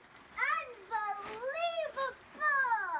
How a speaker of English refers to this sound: This next fingerprint is from my friend John Sowers, who sent the sound of his kids.